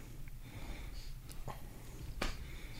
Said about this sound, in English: Who's the heavy breathing? What the hell?